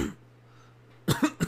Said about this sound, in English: I thought I got rid of the Rona. Apparently not. I am coughing up a storm today.